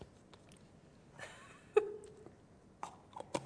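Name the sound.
chewing a sandwich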